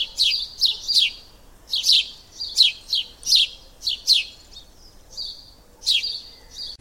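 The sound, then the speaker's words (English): A small bird chirps in quick, bright bursts, around a dozen sharp tweets coming in loose clusters, clear against a quiet background with no one talking. “A little bird told me I forgot to mention something really important”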